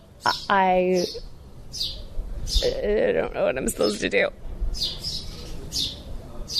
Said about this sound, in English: Meanwhile, there are some really cute birds doing cute bird things here outside, and it's fun to watch them.